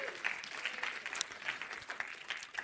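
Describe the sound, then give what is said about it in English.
An audience gives a hand clap of praise, clapping steadily for a few seconds, a dense wash of many overlapping hand claps at a moderate, even level with no voices standing out. “Come on, give my hand clap of praise.”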